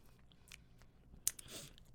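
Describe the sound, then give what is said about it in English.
Wet mouth noises of someone eating a popsicle into a microphone: soft smacking and licking, a sharp crunchy click partway through, then a longer slurping hiss. No one speaks. “First of all, you're making all these mouth noises in the mic for people.”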